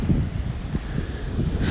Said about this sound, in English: Whew. And it's a bit windy. And I am at the beach.